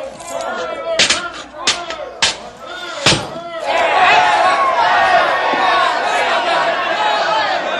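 An angry mob of boys bursts into loud, overlapping shouting that keeps up without a break, coming right after a few sharp bangs as a door is opened.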